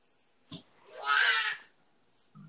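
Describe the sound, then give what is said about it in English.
A single loud, drawn-out burp from someone drinking PBR, lasting about half a second, raspy and low, with brief softer mouth noises before and after it. No one speaks. “Excuse me. Burped.”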